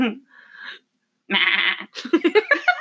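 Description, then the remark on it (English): A single loud, nasal goat bleat lasting about half a second, clear, preceded by faint quieter sounds and followed by someone talking. “Now we got meh.”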